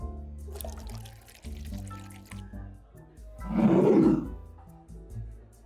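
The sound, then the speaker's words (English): Three fingers of Irish whiskey are poured into a glass in a short, gurgling splash lasting about a second, clear, set against a quiet, steady tonal background with no talking. “Another 3 fingers of Irish whiskey, please.”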